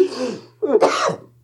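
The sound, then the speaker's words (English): A harsh cough in two rough bursts: a rasping throat-clearing sound that fades, then a louder, fuller hack about half a second later. “Cover your cough.”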